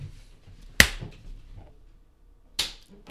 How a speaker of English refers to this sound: Clap test.